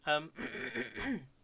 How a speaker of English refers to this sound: sorry, clearing my throat right into the microphone.